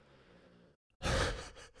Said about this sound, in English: My dog snores so loud.